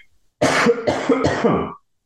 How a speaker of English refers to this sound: The cough can be my pause. How about that?